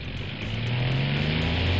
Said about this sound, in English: Oh no! It sounds like the engine is failing. The plane is busted.